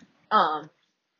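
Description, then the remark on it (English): A pet dog gives one short, sharp bark, clear, with silence before and after it; heard in the morning through an open patio door. “And I know y'all probably can hear my dog.”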